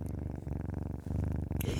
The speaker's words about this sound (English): This is my little kitten. She's such a love fest, little purr ball. She's here recording with me right now.